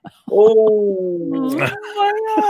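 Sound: dog howling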